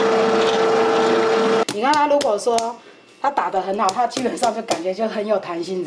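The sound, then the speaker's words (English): A blender mixing flour, yeast, a sourdough starter and soy milk into bread dough at a bakery business in Hsinchu roars loudly for about a second and a half, a dense, steady motor whir with a constant whine, then cuts off abruptly as someone starts talking. “adds flour, yeast, a sourdough starter, and soy milk into the blender.”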